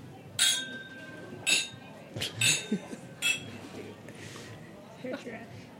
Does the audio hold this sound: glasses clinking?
yes